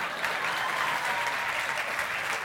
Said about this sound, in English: Normally people clap when they like something.